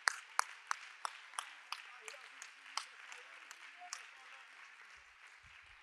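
A church audience claps hands together to affirm they are believers. Sharp, fairly regular beats stand out above a steady wash of crowd applause and murmuring, at a modest level throughout.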